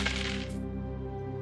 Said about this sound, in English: Go and roll your wisdom dice pool. See how many advantages and disadvantages you can give out.